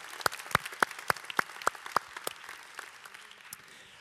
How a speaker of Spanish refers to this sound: Y gracias a Dios por estos dos varones que en las últimas dos semanas hicieron un gran trabajo en arrancar esta serie. Es más, ¿por qué no les damos un fuerte aplauso por el trabajo que ellos hicieron?